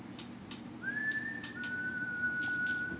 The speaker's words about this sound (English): Thought he was about to start whistling Twisted Nerve.